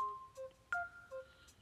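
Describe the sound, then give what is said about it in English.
A telephone rings at the workplace where Buddy the Elf helps answer the phones, with a few short electronic tones and beeps, one sharp click partway through, fairly quiet and with no voices. “He helped answer the phones.”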